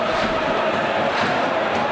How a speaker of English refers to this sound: Wrexham defending the end where their fans are massed. As Tranmere will kick off. The ref checks both keepers are ready. Tremendous noise coming from the Wrexham end.